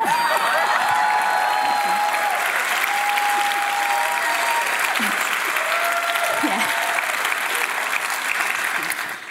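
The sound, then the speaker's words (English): A crowd applauds steadily, a dense wash of clapping that holds at a constant loud level for several seconds before tapering slightly at the end, with faint voices mixed underneath. “This is the part where you clap.”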